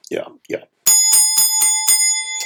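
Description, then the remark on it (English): A brief bit of speech, then an old school bell starts ringing loudly and continuously, its clapper hammering in a fast, steady rattle with a bright metallic tone. “There's that old school bell, gentlemen, even though punctuality is no longer important, apparently, at Juilliard.”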